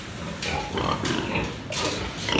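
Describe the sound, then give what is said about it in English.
Several pigs grunt and squeal in a noisy, crowded pen on a small commercial pig farm of about 150 pigs, on the beach on the coast of Fujian, China. Their overlapping calls rise in bursts over a constant background din of the farm. “So I went to a pig farm on the coast of Fujian, on the beach, and it was a kind of small commercial farm, about 150 pigs.”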